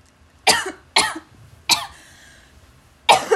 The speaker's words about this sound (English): Oh my God, what the fuck? I hate coughing.